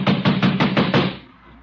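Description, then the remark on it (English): Six heavy, rapid thuds pound loudly against a door in a steady rhythm as someone tries to bust the door down, then a short fading resonance as the banging stops. “I'm going to bust this door down.”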